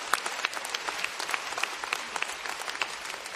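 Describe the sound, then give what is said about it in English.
A church audience claps in praise, a dense, steady patter of many hands with regular sharper accents roughly every third of a second, at moderate loudness with no talking over it. “If you're going to clap, why don't you give it with all your heart?”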